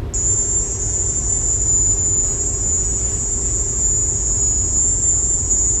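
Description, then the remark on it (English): A piercing, high-pitched insect drone holds steady and unbroken for the whole stretch, sitting over a low, constant rumble of background noise, with no voices. “A device capable of producing a very high-pitched, sustained chirping noise.”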